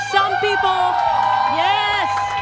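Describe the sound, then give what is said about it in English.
A live audience at Chatter DC in Washington, D.C., cheers and whoops in a dense, continuous wash of voices, with high rising shouts and excited calls layered over steady crowd noise throughout. “We got a great crowd.”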